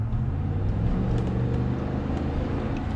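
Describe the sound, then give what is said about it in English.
A 5.7-liter eight-cylinder Hemi V8 engine idles with a deep, steady rumble, its low throbbing tones holding an even loudness for three seconds, with a slight shift in pitch partway through. No one speaks. “you got the rumble of those eight cylinders or whatever.”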